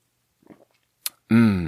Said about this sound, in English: Let's have another sip of strawberry Spindrift. Real fruit tastes better.